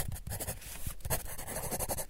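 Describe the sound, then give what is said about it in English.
Steady scratching of a pencil moving across paper in short strokes, with brief pauses between scribbles and no voices. “there was this one scene where they zoomed out into the real world, and they were showing this little kid drawing on paper, and the sounds of it was so nice.”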